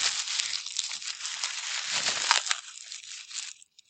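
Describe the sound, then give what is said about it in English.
Bubble wrap crumpled frantically right against the microphone: a dense, continuous stream of sharp crinkles and crackles for about three and a half seconds, then a few scattered rustles as it stops. “Is your mascot some cellophane that you're frantically crumpling in front of your microphone?”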